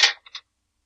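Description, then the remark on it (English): A 1990s die clatters onto a table with a sharp initial knock, followed by two quick, lighter ticks as it tumbles and settles, then silence. No voices. “If it falls off the table, we re-roll, right?”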